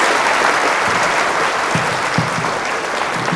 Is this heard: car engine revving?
no